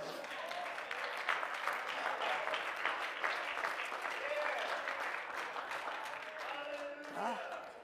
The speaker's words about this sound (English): he sits in his chair, he's had a stroke, he's here, you know, while we're clapping our hands, he's glory.